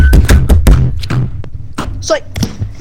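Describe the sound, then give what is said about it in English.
A rapid series of heavy thuds as something is slammed repeatedly onto a desk as an ASMR bit, loud and uneven in rhythm, with a brief vocal squeak partway through. “ASMR slamming on desk.”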